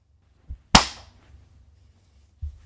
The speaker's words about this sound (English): You know, I've been doing my research into video production. I saw that it's good to have a clap at the beginning so that you're able to visualize it. Clap on, clap off.